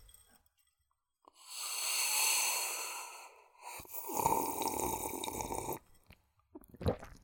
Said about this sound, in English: I've got the headphones on, and I turned your like levels up a bit, and yeah, like the swallow. My body reacted as if I had just swallowed.